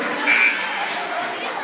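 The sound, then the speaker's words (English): A brief, flat electronic buzz from the scorer's table buzzer at a basketball game involving Iron Mountain sounds once over a steady murmur of crowd noise, lasting only a fraction of a second. “That buzzed in at the scores table.”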